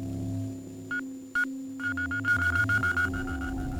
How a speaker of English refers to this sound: A kiss squeak is followed by two grunts and then a lork. Lorks may be strung together to form quite loud series.